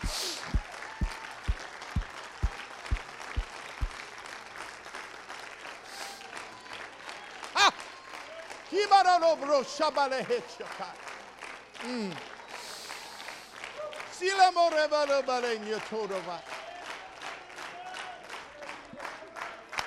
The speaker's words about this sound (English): Oh, come on, give him a hand clap of praise.